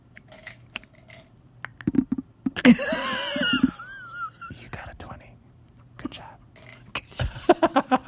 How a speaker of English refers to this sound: You roll the dice.